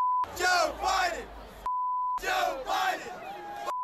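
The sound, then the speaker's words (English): A huge crowd of about 70,000 college students at a college football game chants in loud unison in two bursts, each phrase covered by a steady high censor bleep tone that runs through and between the chants. “I'd rather be booed, to be honest with you, than have 70,000 college students chanting, F me.”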